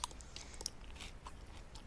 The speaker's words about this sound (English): Can you hear me chewing? Is this coming across? Yeah, a little bit. Yeah, a little bit. It's not super loud, which is a problem